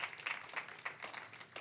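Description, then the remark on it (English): A crowd applauds: a steady, dense patter of many hands clapping at once, fairly soft, with no voices over it. “When we went into this, many of you will remember, and you clapped, yeah.”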